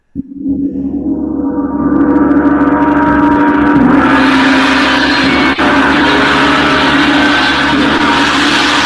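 A gong is struck twice: the first hit blooms into a loud, shimmering roar that keeps building, and a second strike lands partway through as the dense metallic wash rings on.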